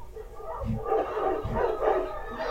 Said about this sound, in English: How could these two people understand where to go just by a pack of barking dogs?